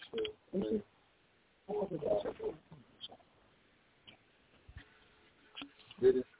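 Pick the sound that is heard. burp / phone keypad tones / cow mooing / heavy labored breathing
phone keypad tones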